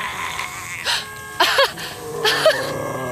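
An old car horn, from the museum's Model T coming down Main Street from the center of town, honks in three short, nasal blasts, the middle one doubled, spaced unevenly over a faint steady background hum. No one speaks.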